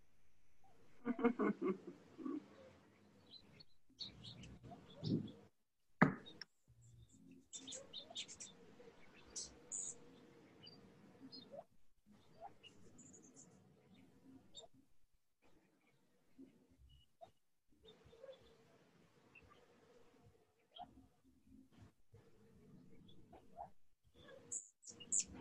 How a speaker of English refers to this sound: I don't know if you can hear my birds still in the bathroom.